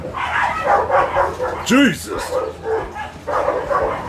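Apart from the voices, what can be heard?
dogs barking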